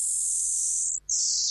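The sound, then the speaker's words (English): A shrill, high-pitched electronic squeal from a space radio signal that repeats every 16 days, converted to sound, holding steady and loud before a brief gap, then resuming at a slightly lower pitch. No one speaks. “this repeating signal that they get every 16 days”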